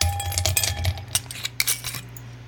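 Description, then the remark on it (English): Ice cubes clink and rattle against a glass in a quick series of bright, sharp taps, with a low steady hum underneath and no talking. There are two ice cubes in a glass of straight Jameson whiskey. “I'm not even, it's just 2 ice cubes and Jameson.”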